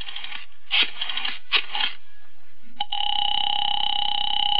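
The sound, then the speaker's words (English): A telephone being dialed to call a girl's father, with a few quick bursts of keypad or dial noise, a click, then a steady, high electronic ringing tone that holds on without pause. No one speaks. “All right, young lady, I'm calling your father.”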